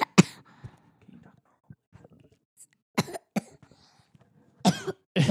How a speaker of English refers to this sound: Is talking like that making you cough?